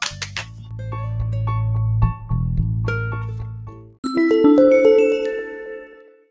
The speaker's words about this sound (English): And There's our bell.